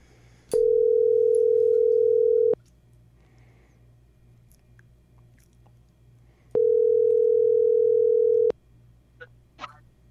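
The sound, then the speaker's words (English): Two long, steady ringback tones of about two seconds each, separated by a four-second pause, from an outgoing phone call waiting to be answered, with a faint low hum underneath and no one speaking. “He never answers his phone, but let's see if he does today.”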